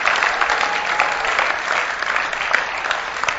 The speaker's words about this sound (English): If we will do that, say amen. And clap your hands for Jesus.